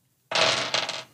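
Window glass breaks with a sudden bright crash, followed by a brief shimmer of tinkling shards that fades out within a second. No voices are heard.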